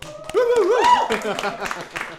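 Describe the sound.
Scattered hand claps from a small crowd, mixed with overlapping voices calling out and cheering, lasting a couple of seconds at a moderate level, applauding the Aberystwyth people who set up the Yes Cymru student branch at the university.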